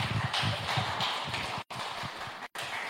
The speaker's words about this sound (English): Let's give him a clap, shall we?